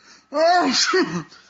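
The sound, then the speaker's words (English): A single loud sneeze with a drawn-out voiced 'ah' build-up breaking into a sharp burst, then a brief trailing vocal sound, all within about a second, from someone sneezing constantly since petting a dog. “Man, I've been sneezing constantly since I pet your dog earlier.”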